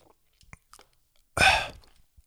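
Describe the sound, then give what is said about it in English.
A single quick slurping sip about half a second long, preceded by a few faint mouth clicks and small lip sounds, with no talking. “Let me take a real quick sip.”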